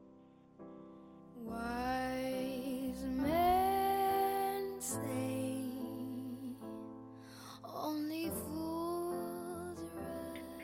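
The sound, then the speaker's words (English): A woman sings a slow, tender love song, holding long notes with gentle vibrato over soft, sustained accompaniment. Clear throughout. “Your third song today, Ruahei, is …, …. We'll have a wee listen.”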